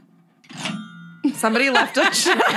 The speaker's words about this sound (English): Somebody left a chimes thing in here, and I will use it. It's like that part from Grease. Ding, ding, ding. Do you remember that? That's the NBC thing.